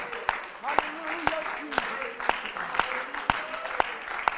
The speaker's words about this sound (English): Why don't we just give the Lord a good hand clap of praise? Can we do that?